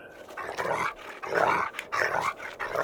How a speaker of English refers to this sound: "Away, away," barked the old yard dog. He was quite hoarse and could not pronounce bow-wow properly. He had once been an indoor dog and lay by the fire, and he had been hoarse ever since.